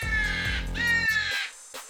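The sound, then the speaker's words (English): A crow caws loudly and harshly, a couple of raspy, drawn-out calls, ending abruptly with a brief faint trailing note. “That was a crow.”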